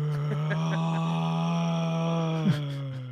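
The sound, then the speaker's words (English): A person imitates a mantis shrimp's low rumble, humming one long, steady, buzzy groan that holds a deep pitch for about three seconds with a brief wobble near the end. “And can you recreate the sound for us? Can you just do it on the air?”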